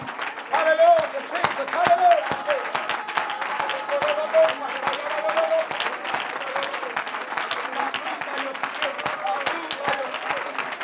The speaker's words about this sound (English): In the name of Jesus, in the name of Jesus, come on, clap your hands with all you have.